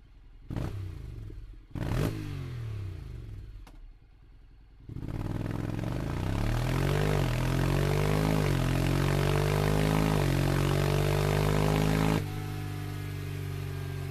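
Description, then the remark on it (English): A few sharp mechanical cranks and clatters, then an automatic motorcycle with a loud aftermarket exhaust fires up and revs repeatedly, pitch rising and falling, before settling into a steady idle. “I'm not going to give you any information other than it's an aftermarket exhaust.”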